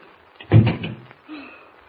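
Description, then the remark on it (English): A door is quickly pushed shut with a solid thud, followed about a second later by a softer metallic rattle as it is locked. “Close the door quickly and lock it, will you?”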